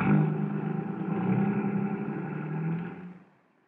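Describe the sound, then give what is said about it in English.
A fire chief's car engine rumbles loudly and steadily with a slight revving rise, then quickly fades out as the vehicle pulls away. No one speaks. “Well, climb into my car, Collins. I'll give you a lift in that direction.”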